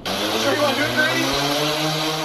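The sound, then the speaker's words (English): A large human-carrying drone's engines whir steadily as it starts, a loud continuous mechanical roar with a low humming tone underneath and a rushing, hissy top, holding level throughout with no pauses. “It sounded like the drone was starting to go down.”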